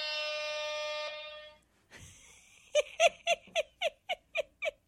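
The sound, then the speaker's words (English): A hype button sound effect plays: a long, bright air-horn-like blare, a brief whooshing sweep, then eight punchy, evenly spaced electronic beats, loud with no talking. “He got me what is called a hype button, which does this.”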